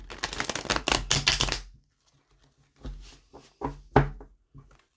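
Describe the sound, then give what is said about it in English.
A deck of playing cards is riffled in a quick, crisp burst of fluttering clicks, then squared and tapped with softer, sparser shuffles and a few light knocks, with no talking. “The sound of cars shuffling.”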